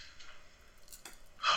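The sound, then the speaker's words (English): A quiet sip of liquor: soft mouth and liquid noises, ending in a brief, sharper slurp near the end. No one speaks. “As I sip on this liquor.”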